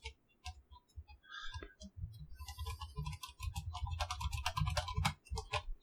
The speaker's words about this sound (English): Just feverishly typing away.